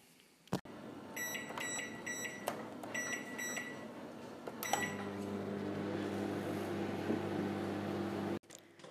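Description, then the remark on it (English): A few quick keypad beeps and a click, then a microwave oven making popcorn at a university starts up and runs with a steady electrical hum until it cuts off at the end. “But then they took the popcorn out, put more back in, and started the microwave again.”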